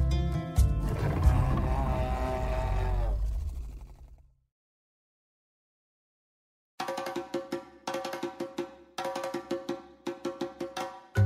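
A loud African leopard call: a long rumbling growl, a brief silence, then a run of rhythmic, rasping grunts like wood being sawed, with no voices.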